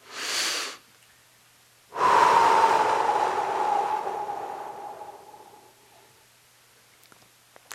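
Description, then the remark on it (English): A slow, deliberate breath demonstrating how to practice mindfulness of breathing: a short audible inhale, a brief pause, then a long drawn-out exhale with a faint whistling tone that gradually fades. No talking. “he said, I'm going to tell you exactly how I want you to practice mindfulness of breathing.”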